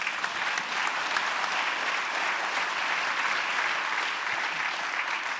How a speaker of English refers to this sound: You guys love to clap for someone getting fired.